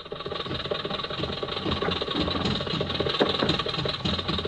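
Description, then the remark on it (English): A bus engine in Havana idles and rumbles steadily, a dense mid-pitched drone with a faint knocking texture running evenly throughout, with no voices. “I finished my drink and hit the street, but instead of hailing a cab, I figured I might as well take the bus and eat for a couple of days on the difference.”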